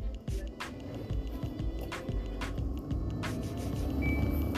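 Steady low rumble of a car cabin as the speaker drives their car, with dense road noise, scattered soft knocks and clicks, and a brief thin high tone near the end.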